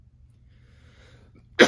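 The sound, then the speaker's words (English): After a stretch of near silence with a faint low hum, one loud cough bursts out abruptly at the very end, harsh and breathy. “Sorry, I'm coughing.”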